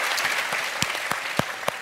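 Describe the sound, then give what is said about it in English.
Audience applause fills the whole moment, a dense wash of clapping with a few sharper, louder claps standing out at irregular intervals. “and I love the way you put it, and that's definitely worthy of applause.”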